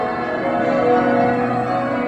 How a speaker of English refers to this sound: The 16 cathedral's bells are the fifth heaviest ringing peal in the world and are regarded as one of the finest ringing peals ever cast.